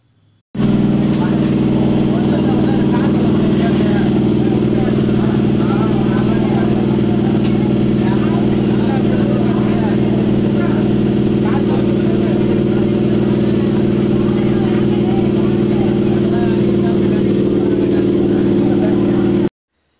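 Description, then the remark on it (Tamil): The engine of an eight-coach train idles loudly at Central railway station in August 2019, a steady, deep rumbling drone throughout, unchanging, with faint chatter of people in the background. “இடம் சென்ட்ரல் ரயில் நிலையம். 8 பெட்டிகள் கொண்ட ரயில் இன்ஜின் சத்தம்.”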